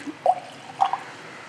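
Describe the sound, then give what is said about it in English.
A couple of soft water drips land in a glass of whisky as a little water is added to it, two small plinking splashes a half-second apart over a quiet background. “I'll put a little bit of water in it.”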